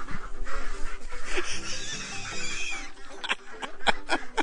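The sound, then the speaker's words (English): A person imitates a duck with a series of nasal, raspy quacks, fairly loud, in uneven bursts with brief pauses between them. “Be more duck-like. Quack, quack, say quack, quack.”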